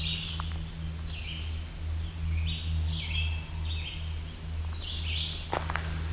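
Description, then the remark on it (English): Short chirpy calls, not song, of barn swallows overhead repeat in quick bursts, twittering in a loose, uneven series above a steady low hum, with a faint rustle near the end and no one talking. “You can also hear some barn swallows overhead.”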